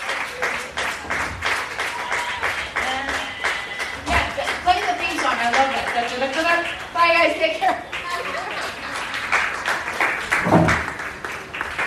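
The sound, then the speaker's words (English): Sustained applause from an audience after a comedy set, steady dense clapping that continues for the full length, with voices calling out and cheering over it partway through. “Keep clapping”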